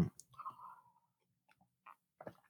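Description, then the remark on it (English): A quiet sip of water: a brief slurping draw followed by soft swallowing and a few wet mouth clicks, with no talking. “Take a sip of water here.”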